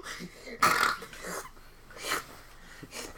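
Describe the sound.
A person imitates a burp with a loud, throaty belch that starts abruptly and rumbles for about a second, followed by a couple of quieter breathy bursts.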